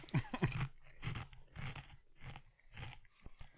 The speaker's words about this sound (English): As soon as I'm done crunching really, really loudly.